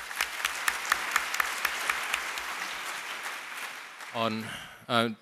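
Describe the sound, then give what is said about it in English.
An audience applauds steadily for about four seconds to welcome Mr. Lee Chee Koon of CapitaLand, a dense patter of many hands clapping, before the clapping fades and a voice starts speaking. “A round of applause to welcome him, please.”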